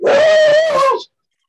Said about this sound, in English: Cameron's dog.